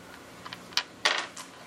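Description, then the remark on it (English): Dice rattle and tumble across a hard tabletop, a quick burst of sharp clicks and clatters that builds to a louder tumble before settling, with no one talking; a player is rolling a dodge in a tabletop role-playing game. “Hey, look, I just rolled my dodge.”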